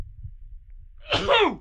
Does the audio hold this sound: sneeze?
yes